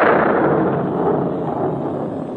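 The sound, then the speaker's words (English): A deep, thunder-like rumble from rolling ninepins, played by a company of little men in a clearing in a wooden hollow under a cloudless sky: one loud, continuous roar that starts abruptly and barely fades over a couple of seconds, with no voices. “From the sound of thunder, I expected at any moment to feel a large raindrop hit the end of my nose.”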